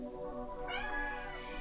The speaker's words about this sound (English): Oh, hello. My cat says we're done.